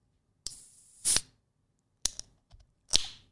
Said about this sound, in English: just kind of open up this can